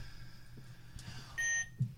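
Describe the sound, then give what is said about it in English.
A single short electronic game buzzer beep, recorded for a mystery object game, a steady high tone lasting about a quarter second over a low background hum, followed by a brief dull knock. “But I want to play it with buzzers.”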